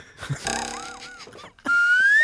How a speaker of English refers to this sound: It's not... Oh, I guess it is a boing. That's like the sound of a cartoon arrow sticking a wall, mm-hmm. right?